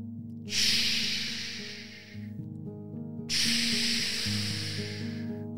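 Two soft ocean waves gently crash on a sandy shore, one after another, each a hissing surge lasting about two seconds before fading out, over a quiet, steady musical backing.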